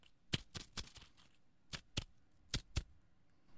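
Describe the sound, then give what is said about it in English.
A plastic slinky slapping together in a series of sharp, crisp clacks, about ten irregular hits with brief pauses between them, fairly quiet with no voices. “That's a plastic slinky slapping together.”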